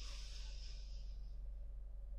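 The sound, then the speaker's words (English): A single long, soft breath drawn in through the nose during a guided breathing exercise, a breathy hiss that swells and then fades after about a second, against a faint low hum with no talking. “Breathe in through the nose.”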